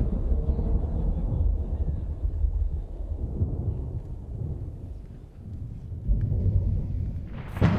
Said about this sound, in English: Thunder booming, right? Wind blowing, rain pelting the roof kind of storms. Like, I thoroughly enjoy nighttime storms.